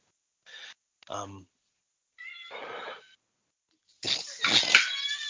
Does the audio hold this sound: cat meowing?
yes